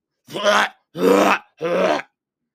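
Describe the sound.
A person imitates a dog, Hound, gagging in the back of a car before throwing up: three strained, guttural heaves in a steady rhythm with brief pauses between, each loud and rough with a rising, throaty pitch.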